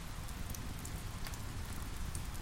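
Steady rain pattering onto the surface of a clear pool, a dense continuous hiss with scattered brighter drop splashes, even in level throughout, with no voices.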